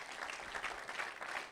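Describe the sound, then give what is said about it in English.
A crowd of people claps together in a steady, dense burst of applause, sustained throughout at a moderate level, with no voices standing out. “Let's clap. Let's clap.”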